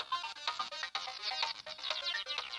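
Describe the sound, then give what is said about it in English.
A bright, tinny synthesized melody played on a phone music app, a quick run of short chirpy notes in a bouncy rhythm, fairly loud, with no talking over it. “You're doing a little synthesized ditty.”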